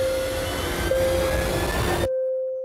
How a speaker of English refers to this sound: It's an Airbus plane, a good bird.